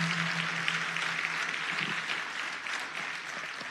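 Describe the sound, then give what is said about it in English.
A crowd applauds steadily for HBCUs, a dense wash of many hands clapping at a consistent loudness throughout, with a faint low hum underneath. “Come on, let's give all of our HBCUs a round of applause.”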